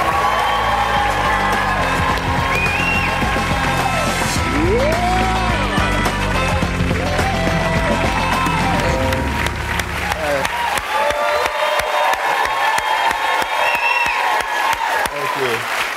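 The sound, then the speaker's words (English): Loud, sustained studio audience applause with cheers and whoops on The Daily Show as guest Brian Tyree Henry is welcomed, carrying on for the full sixteen seconds, while a band plays underneath for roughly the first ten seconds before the clapping continues alone. “I bow to the applause.”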